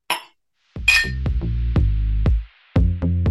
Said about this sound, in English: I've got a cheers with my cup of tea and my empty glass of wine. But anyway, Well, I'm gonna choose my empty glasses, so there we so go.